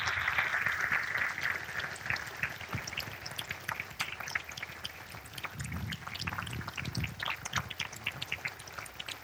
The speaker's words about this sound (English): So let's give him another round of applause, and I'll end in prayer.